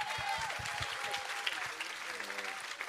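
An audience at a New Day church gathering claps steadily after a prayer for about three seconds, a dense, even wash of many hands with no pauses. Faint voices and cheers mix in beneath the clapping.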